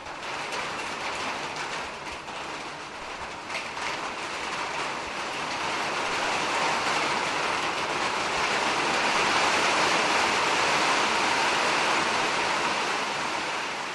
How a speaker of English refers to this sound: This request comes from Carlos at Hill Correctional Center. Carlos was born in Puerto Rico and wanted to hear the sound of rain falling on a metal roof because it reminds Carlos of home.